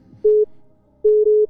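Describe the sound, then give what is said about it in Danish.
A telephone tone from someone calling in sounds in two clear electronic beeps, one short and one longer, steady and fairly loud with brief silence between them and no talking. “Nu er der sørger med nogle andre, der ringer ind.”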